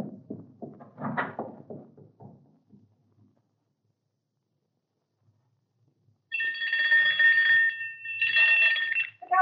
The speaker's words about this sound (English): Ring the doorbell. I'll hear it. Ring it loud.